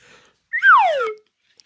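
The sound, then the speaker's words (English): A slide whistle sounds once, a single loud tone that jumps up, then slides smoothly downward in pitch over about half a second before cutting off, with no talking. “Where's my slide whistle?”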